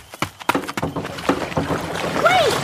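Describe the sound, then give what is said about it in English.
Several quick thumps and sloshing splashes as someone jumps into a small rowboat on water, trying to land at the same second as another person, followed by continuous watery churning with a few faint whistling tones near the end. “I'm going to try to jump into the boat the same second she does.”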